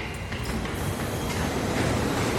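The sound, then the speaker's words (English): A loud, steady rumble of a train moving through a freezing subway station, a dense mechanical roar that holds evenly for the whole moment with no voices. “Carol waits on the freezing subway station, alone.”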